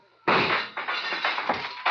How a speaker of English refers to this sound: Keep shooting, Saxon, in the dark. You got four shots left.